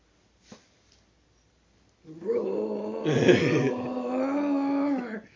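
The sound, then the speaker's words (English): A person lets out a long, loud, growling roar with the voice, sustained for about three seconds after a brief click and a moment of quiet. “Roar.”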